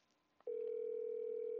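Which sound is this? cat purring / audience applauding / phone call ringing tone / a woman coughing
phone call ringing tone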